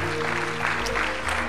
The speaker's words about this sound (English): I'm thankful for the church in Auburn Hills because they have invested in our church, in our youth, in our children's, and I'd like to just give them a hand clap of thanks today for all of that.